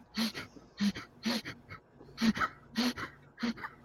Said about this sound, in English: So this is what people are going to have to hear in the next 30 minutes of him trying to breathe.